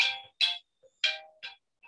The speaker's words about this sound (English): Hold on. I'm getting a phone call, which I will shut off.